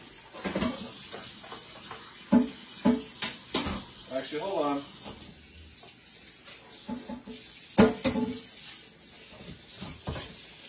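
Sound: water running from tap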